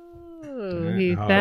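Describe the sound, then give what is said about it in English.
A dog lets out a single drawn-out whining howl, starting low and thin, then rising in pitch and swelling louder over about a second and a half. “Easy, dog. I know.”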